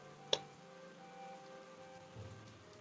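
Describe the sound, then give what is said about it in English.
Soft, steady rain ambience hisses evenly throughout, with one sharp tap of a drop early on and faint low rumbles underneath; no one speaks. “The rain is really loud.”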